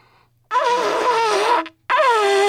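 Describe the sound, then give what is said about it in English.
A loud, buzzy honk blown out of the side of someone's mouth, a voice imitating a horn: one long wavering blast, a brief gap, then a second blast cut off at the end. “I thought, you know, I'm gonna honk out of the side of my mouth.”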